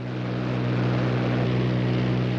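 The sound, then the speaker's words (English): A propeller airplane drones steadily, its low engine hum and rushing noise holding an even, fairly loud level throughout, with no voices. “She had short hair, wrote poetry, went on hikes, and even flew her very own airplane.”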